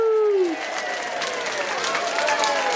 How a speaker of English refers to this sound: Woohoo! That's pretty awesome. All right, fade out there. Come on, cut it out, folks. That's enough for applause. We don't want to let it go to their heads.